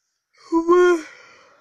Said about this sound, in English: Sorry, I'm yawning because I'm a little tired.